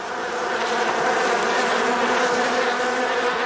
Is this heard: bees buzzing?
yes